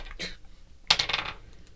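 Dice rolled for a dexterity saving throw, difficulty 15, in a tabletop game clatter across a tabletop: a short clack, then a sharp bright hit followed by a quick rattling run of clicks that tapers off. No one speaks.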